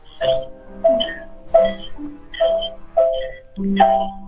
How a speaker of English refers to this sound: What is that? Somebody's playing Jingle Bells over the phone. Yeah, it's me. I'm playing a little Christmas music for you.